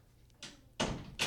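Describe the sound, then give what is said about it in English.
A door is pushed shut, a soft rustle followed by two louder scraping thumps in quick succession as it swings closed and latches. No one speaks. “Close the door, please.”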